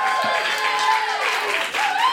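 A live crowd applauds loudly and steadily, with dense, continuous clapping and scattered cheers and whoops rising above it throughout.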